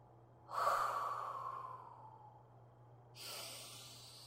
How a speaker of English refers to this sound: Now I begin to control my breathing.